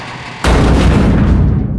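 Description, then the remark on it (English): A creature smashes against a garage door: a sudden, heavy smash bursts out of near silence, its loud booming crash rolling into a sustained, rattling rumble that holds to the end. “Three times more, the thing smashed against the barrier.”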